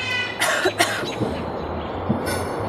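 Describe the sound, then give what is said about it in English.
A raven mimics a human cough, two quick raspy hacks in close succession, clear, over a low steady background rumble. “Oh, he coughed.”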